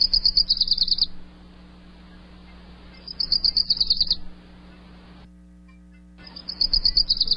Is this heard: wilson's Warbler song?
yes